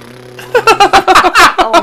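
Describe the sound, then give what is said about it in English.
After a low steady hum, a voice imitates a Peterbilt truck's Jake engine brake with a run of loud, rapid stuttering bursts, lasting about a second. “When I fart, it sounds like a Peterbilt Jake breaking just...”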